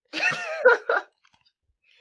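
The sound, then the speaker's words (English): A person coughs, three hoarse, voiced bursts over about a second, followed by near silence and a brief new sound starting at the end. “I think I got Omicron. I got the sniffles.”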